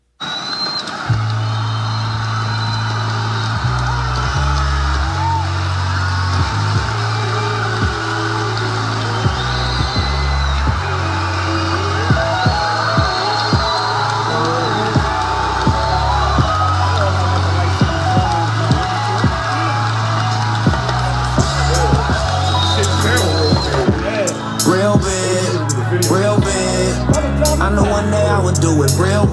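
A hip-hop song with rap vocals plays loud and steady, driven by a deep, stepping bass line and a punchy, regular beat that runs continuously throughout.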